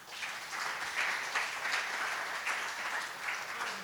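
A crowd applauds steadily, a dense wash of many hands clapping at once with no single claps standing out, sustained at an even level throughout and heard from within the room.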